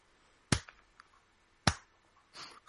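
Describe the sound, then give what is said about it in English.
Two sharp hand claps spaced about a second apart in a deliberate slow rhythm, a slow clap in the style of classic 80s teenage movies, with quiet background noise between them and no talking. “Let me do the classic 80s teenage movie slow clap.”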